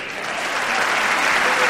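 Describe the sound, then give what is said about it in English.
Steady, dense applause from an audience during a recorded political speech urging people to elect Hillary, a continuous crackle of many hands clapping at an even, fairly loud level with no voices standing out. “That's the one I clap at.”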